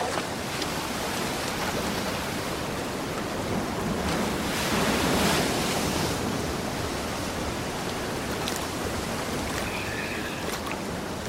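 Ocean waves wash onto the shore in a continuous roar of surf, swelling into a louder surge midway before settling back to a steady rush. No one speaks.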